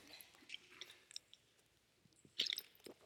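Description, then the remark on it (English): Quiet wet mouth sounds of someone drinking water: soft sips and clicks, then a louder gulping swallow near the end, with no talking. “Dramatic drink of water.”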